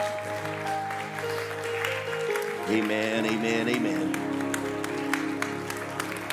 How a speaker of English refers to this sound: Could we stand to our feet one more time? Just give the Lord a hand clap.